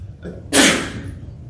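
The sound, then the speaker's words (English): A single staged sneeze bursts out suddenly, loud, a sharp breathy blast that fades quickly into quiet background tone. “And what we mean by that, I didn't really sneeze.”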